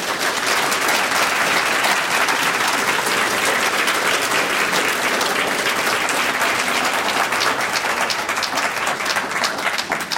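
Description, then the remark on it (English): Sustained applause from an audience for a discussion panel, a dense, steady wash of many hands clapping at an even loudness for about ten seconds, with no voices standing out. “Let's let you have the last word, which is applause for our great panel.”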